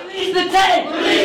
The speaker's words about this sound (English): Cell phone video streamed live to Facebook as their calls echoed against the marble walls.